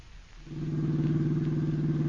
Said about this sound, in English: Margot and I were driving out to your uncle's.